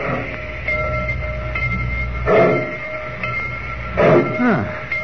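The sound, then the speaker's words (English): A train rumbles steadily as it pulls away from the station at Rocky Point, with a low mechanical drone, faint hissing and a couple of louder rattling surges partway through. “I've gotten off trains before, Mr.”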